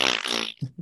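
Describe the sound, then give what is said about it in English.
A voice imitates a squeaky chair like the one Max Headroom had: a strained, raspy, buzzing squeak held for about half a second, then two short, lower bursts. It is fairly loud and has no other talk over it. “Well, Max Headroom had a quite squeaky jar. It went...”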